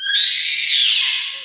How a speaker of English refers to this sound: And Kraloff picks it. The sound that was once a ringing becomes a terrible high-pitched scream.